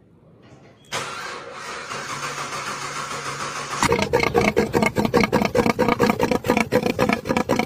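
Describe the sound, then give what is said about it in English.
A car engine cranks with a steady whirring starter for a few seconds, then fires up into a loud, choppy, pulsing rumble that throbs rhythmically. No one speaks. “That Corvette probably wishes it sounded that good.”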